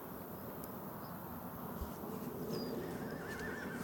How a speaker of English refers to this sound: Oh, that was a horse in the background. That happened just as I lifted a leg over the fence.